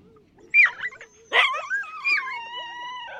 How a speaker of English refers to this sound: And keep alive at least the sound, that deep-throated growl, the barking howl of the team.